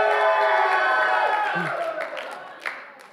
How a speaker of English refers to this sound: It says to shout with a battle cry, triumph. Woo! You're going down, devil! You've got purpose. There's authority. It's victory. Shout. Oh, y'all missed it. Ruah, shout with authority.